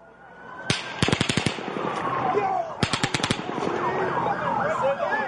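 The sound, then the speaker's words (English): Two rapid bursts of gunshots, about six or seven sharp cracks each, ring out loud over a wailing siren and muffled background commotion, recorded on a police body camera. “You heard someone in there saying, that's fireworks. No, that was gunshots.”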